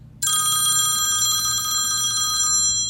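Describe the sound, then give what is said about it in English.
A loud telephone bell rings in one continuous metallic trill for a little over two seconds, then cuts off, leaving a low background hum. No one speaks. “I can't bring myself to answer the phone.”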